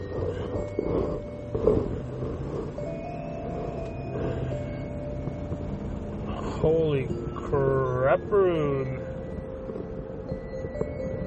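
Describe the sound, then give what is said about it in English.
A car engine, running rough and sounding especially bad, drones steadily while driving, a low rumbling hum with faint whining tones running throughout, and a man speaks a short exclamation over it partway through. “My car sounds especially bad right now.”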